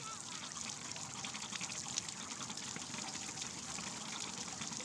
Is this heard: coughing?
no